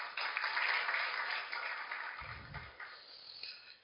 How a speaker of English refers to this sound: Let's clap for them.